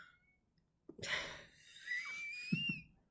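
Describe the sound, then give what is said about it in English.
A cat yowls: a breathy, rasping burst followed by a thin, high, wavering cry that slowly rises in pitch, fairly faint and with no one talking. “I'm sorry, the cat is yowling really loud.”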